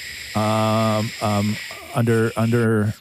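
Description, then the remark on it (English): Radio static: four buzzy, droning bursts at a steady low pitch, the last two slightly wavering, laid over a constant thin hiss, with brief gaps between them. “Radio static.”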